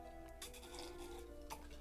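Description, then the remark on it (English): Someone slurps a Moscow mule cocktail: two short, hissy sucking bursts a second apart, quiet, over a low steady hum with no talking. “Is a good slurp there”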